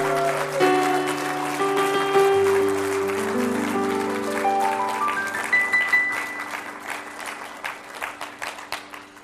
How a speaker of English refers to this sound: One more time, can we give all of our mothers a thunderous round of applause today?